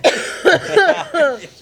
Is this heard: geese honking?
no